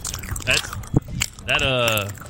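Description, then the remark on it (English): Wet chewing and biting of strawberries and M&Ms, with squishy smacks and a sharp crunch near the middle, interrupted by drawn-out voiced hums or groans. “I just went and recorded myself in the back room. Yikes. Just chewing down a couple strawberries.”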